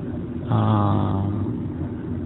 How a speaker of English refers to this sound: I spend some time in traffic, and I think about it.